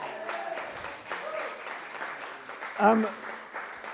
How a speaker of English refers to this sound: Okay, round of applause.